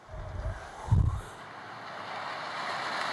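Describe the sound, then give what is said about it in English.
Ocean waves, part of a song, wash in a steady hiss of surf, with a deeper rumbling swell near the start that settles into a broad, even roar. No voices. “That ocean sound is part of the song.”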